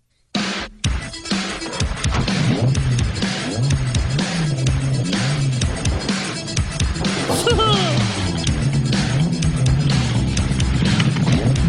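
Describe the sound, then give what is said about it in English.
A song plays loudly and continuously for about twelve seconds, a dense full-band mix with a steady beat and melodic vocal-like lines, starting abruptly after a brief silence. “When my dad's on his way to Burger King to return the Whopper Juniors that have mayo on them, that right when he touches the handle on his car to go back to Burger King, this song.”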